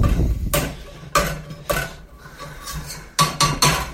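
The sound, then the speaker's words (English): Several sharp metallic bangs on a cooking pot of already-mashed potato, struck just for effect at an uneven rhythm with short ringing tails, including a quick double hit near the end, fairly loud with no talking. “I was just making banging noises on my pot.”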